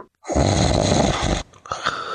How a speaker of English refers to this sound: That is a snoring. Snore.